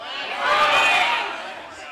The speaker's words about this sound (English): So on the count of three, I would like you all to yell at me and shout out your hometown where you grew up, all right? So ready? One, two, three.